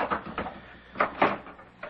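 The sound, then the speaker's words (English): A door being opened: a handful of clunks and rattles, a couple of soft knocks followed by two sharper thuds, then a final click, moderately loud, with no voices. “Would you open the door, please?”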